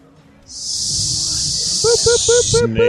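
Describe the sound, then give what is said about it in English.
A person hisses like a snake in the lobby bar at the MGM Grand, one long, steady breathy hiss lasting a couple of seconds, while a faint voice and soft tonal background sounds continue underneath. “Slithery snake.”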